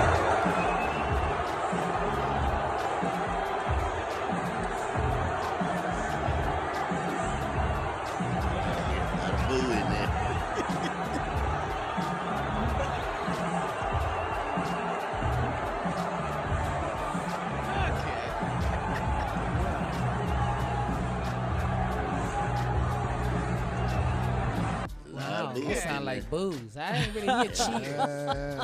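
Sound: arena crowd booing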